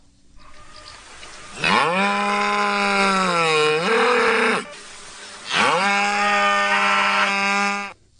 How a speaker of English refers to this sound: What was that? It was a cow.